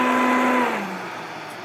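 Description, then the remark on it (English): A blender motor whirs loudly at high speed, pureeing avocado until smooth, with a steady whine over churning noise, then its pitch drops and the sound eases off as it slows down. “And when you use a blender, you're also like whipping air really fast into whatever you're pureeing, if it's on a very high speed.”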